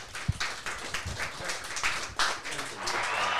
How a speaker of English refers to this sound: The real applause and the big applause. Right here. I just like it. I guess it's an effort to keep me humble. He hits a button and he hears applause, and I guess other people do, but I never get to hear it.